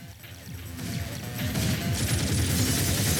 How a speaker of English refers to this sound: Look at that. Again, could have just taken them all out. Nope, he's gonna waste 30 rounds dropping glass on him.